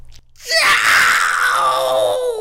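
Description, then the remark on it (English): A single loud, sustained human scream from a person at a doctor's office bursts in after a brief quiet moment and holds for about two seconds, strained and piercing, with no talking around it. “I'm at the doctor's office. I'm screaming.”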